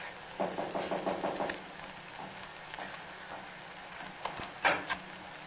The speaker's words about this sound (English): Now, take the knock on the door and the footsteps coming in. That's bottom of page 11.